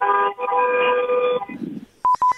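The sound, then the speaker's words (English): A car horn in traffic blares long and brassy for over a second, followed by a low rumble and then a quick burst of three or four short, high-pitched beeps. “Sound like in traffic.”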